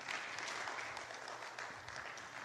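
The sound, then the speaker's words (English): An audience bursts into steady applause in praise of the people who set up the venue, a dense wash of many hands clapping at once, holding at an even level throughout, with no voices standing out. “So give them a hand clap of praise.”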